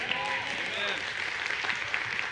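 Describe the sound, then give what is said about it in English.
A church audience claps steadily together, a dense wash of many hands forming continuous applause at an even, moderate loudness, with some murmuring voices mixed in underneath. “Or a strong clap. I like that better.”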